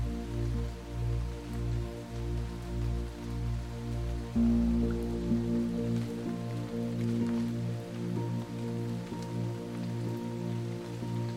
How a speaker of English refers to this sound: The noise from the highway fades, and a light rain begins to blanket your surroundings. The droplets are cool on your skin, and the gentle noise of the rain meeting the lake water relaxes you.